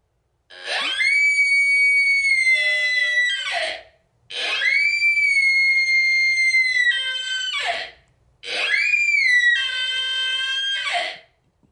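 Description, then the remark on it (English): Three long, piercing sika deer stag calls, each a high rising whistle-scream held for about three seconds before breaking off, separated by brief silences. “Would you mind ripping a Seek a Stag call?”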